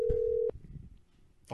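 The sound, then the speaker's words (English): A short electronic phone ring, one steady half-second tone, fairly loud, followed by a quiet low rumble and a brief burst of noise at the end. No one speaks. “All right, phone is ringing, motherfucker.”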